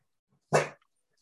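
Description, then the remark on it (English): A dog lets out one short, sharp bark, standing alone in an otherwise quiet moment with no voices. “Why are you barking, dude?”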